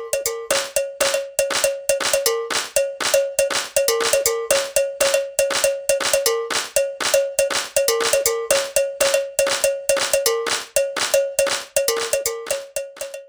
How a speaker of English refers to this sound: To feel the syncopation in this example, we will keep the steady beat with our hands while the African alo bells play.